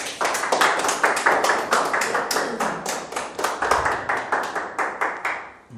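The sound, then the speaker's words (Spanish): A church audience applauds for the King, steady rhythmic clapping that swells and holds loudly for several seconds, the claps roughly in time with one another, with no voices on top. “Dele ese aplauso al Rey.”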